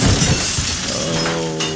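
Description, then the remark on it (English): A loud, sudden crash of shattering glass and splintering wood, with debris clattering and tinkling for a moment before settling, with no voices. “Was that deer made of glass and plywood?”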